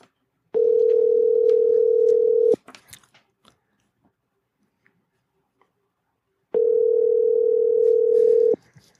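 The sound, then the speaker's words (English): Two long, steady ringback tones of about two seconds each, separated by a few seconds of near silence with faint clicks, as an outgoing phone call to a friend rings. “Callity call. See how this goes.”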